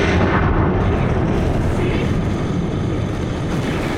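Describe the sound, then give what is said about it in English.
A massive, sustained explosive roar from a really big explosion fills the whole stretch, a dense, booming rumble heavy in the low end that stays loud without letting up. No voices are heard. “The explosion is, well, it's really, really big and can be seen from the depths of Londonstein to the heights of Sniper Hill,”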